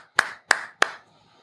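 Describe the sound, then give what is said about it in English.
Three sharp, evenly spaced, loud hand claps, each with a brief echo, given in tribute to coach Nate McMillan, then silence. “Clap it up to him.”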